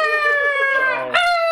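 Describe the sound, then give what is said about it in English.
A squeezed rubber chicken toy lets out a long, loud, nasal scream with a strained, wavering pitch, then jumps sharply higher near the end before cutting off. “This will teach you. The shouting chicken!”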